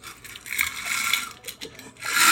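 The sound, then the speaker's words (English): Loud, gritty crunching of ice being chewed while drinking water, a dense burst of crackly high-pitched noise that fades briefly before surging again, with no voices. “Mine's really loud because I'm just eating ice.”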